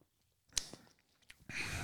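A sip of pilsner beer: a sharp click, a few small wet mouth sounds, then a steady airy slurp at the end. No one speaks.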